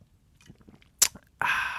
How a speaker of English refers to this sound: In fact, we'll demonstrate now. We'll take a drink. Big slurp. To gross everyone.